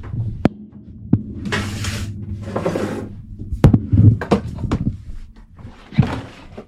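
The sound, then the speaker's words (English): A refrigerator hums loudly and steadily, a low drone that never lets up, with occasional hissy whooshes and sharp clicks and knocks breaking over it. “Do you want to hear my fridge?”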